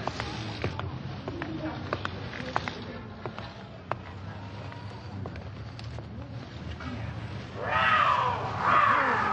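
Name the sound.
cougar snarling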